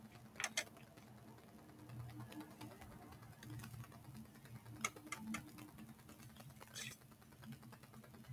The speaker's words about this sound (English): Do you remember clocks like that that would just flick over? Yeah. Yeah, my grandfather had one in his room and you could hear it from the bathroom in the middle of the night.